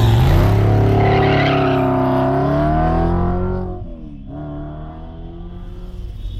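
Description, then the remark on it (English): A car engine roars loudly at speed on the San Bernardino freeway heading west, its pitch climbing and wavering, then dipping abruptly as the vehicle appears to skid before the motor drones on steadily. “We're on the San Bernardino freeway heading west.”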